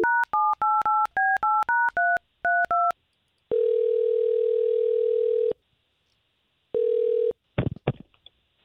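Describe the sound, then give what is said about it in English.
A quick run of about eleven touch-tone beeps dials a number from a radio station to call a listener, then a steady low ringback tone sounds for two seconds, pauses, sounds briefly again, and ends with a click and clatter. “we'll try to give her a call right now.”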